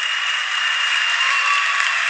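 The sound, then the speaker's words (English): Steady, dense applause from a crowd for Trump in a played video clip, a continuous wash of many hands clapping at a constant loud level with no voices standing out. “There's so much applause in this.”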